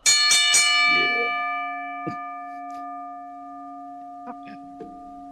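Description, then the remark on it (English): A bell is struck a few times in quick succession, then its bright, metallic tone rings on and slowly fades, loud, with a few faint clicks in the background. “DPP, ring the bell.”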